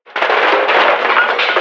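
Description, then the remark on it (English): A loud, sustained clatter of cans tumbling and knocking together as someone stocks cans at a bodega while on the phone, a dense rattling crash with sharp little impacts scattered through it, lasting over a second with no voices. “Oops, I probably shouldn't try to stock cans while I'm on the phone.”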